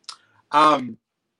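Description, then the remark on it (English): A quick, sharp mechanical click like a camera shutter, followed by a short voiced sound about half a second long. “But yes, it's clicking now.”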